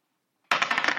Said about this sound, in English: All right, you can roll the dice then. All right. Do you want odds or evens? Odds.